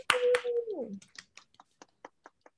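A short vocal whoop opens, then scattered finger snaps and light claps follow for an award recipient: a dozen or so sharp, dry clicks at an uneven pace, fairly faint and spaced apart.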